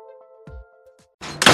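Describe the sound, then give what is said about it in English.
A door slammed by kids shuts with a heavy low thud over a steady ringing tone, followed by a second lighter knock and then a sudden loud, harsh burst of noise. “Hey! You kids quit slamming my goddamn door!”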